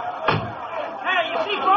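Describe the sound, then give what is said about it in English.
A single loud bang against a door rings out early, followed by the murmur of an agitated mob and overlapping voices that continue throughout. “Take it easy there. Don't knock that door.”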